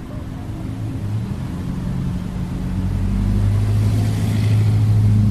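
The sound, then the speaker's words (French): A deep engine rumble of urban traffic grows steadily louder, its low droning tones rising as a vehicle revs and pulls closer through a city street, with no voices present. “La symphonie urbaine des sons, des silences, des vrombissements, des voix.”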